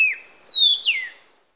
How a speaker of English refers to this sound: And as a guide, you're very much tuned in for this, because it's a major target for birders that you're guiding. So, yeah, we'll play now the call of the mottled berry hunter.